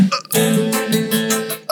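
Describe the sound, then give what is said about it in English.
A long, deliberate forced burp, made by swallowing air, rumbles out, starting with a short gulp and stretching into a sustained, croaky belch that wavers in pitch for over a second. “Yeah, it's like really swallow some air.”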